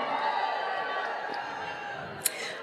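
A live audience cheers and murmurs in a steady, dense wash of crowd noise for a few seconds, with one brief sharp sound near the end.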